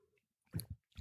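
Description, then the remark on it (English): A wet slurp of someone sipping a hot drink from a Ball glass jar, two quick gulping pulls after a quiet pause, then the start of another sip at the very end. “I'm sipping a hot beverage from a ball jar.”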